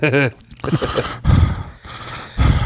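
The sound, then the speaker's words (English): A voice imitates heavy, mechanical mask breathing: a brief voiced sound, then three loud, raspy, hissing breaths drawn in and pushed out. “Without the heavy breathing. That's what the podcast needs. It's Darth Vader background voice.”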